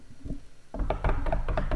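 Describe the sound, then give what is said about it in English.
A quick run of about six sharp knocks on wood, rapped in an uneven rhythm after a quiet moment, with no talking. “he's smart and doesn't really take big hits, knock on wood.”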